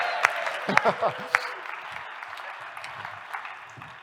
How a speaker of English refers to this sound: So you've got it. You can cheer if you want.